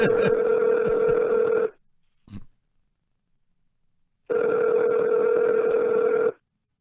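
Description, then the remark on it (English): Two long ringback tones of an outgoing phone call, each about two seconds, separated by a few seconds of near silence with a brief faint bump between them; no one speaks. “Well, he can't hear us, you know, when it's ringing.”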